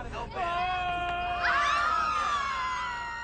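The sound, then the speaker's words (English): A man lets out a loud, drawn-out scream that wavers and then jumps higher in pitch partway through, sustained for about three seconds, alone. “It comes down. And he screams.”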